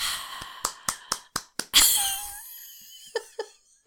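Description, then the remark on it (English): A voice imitates a roaring, cheering crowd as a homemade sound effect: a quick run of breathy, hissing bursts builds into one louder, sustained rushing roar that fades away, followed by a couple of soft puffs. “To be, that's supposed to be a cheering crowd.”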